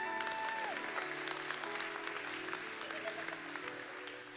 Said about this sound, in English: All right, give the kids a big clap.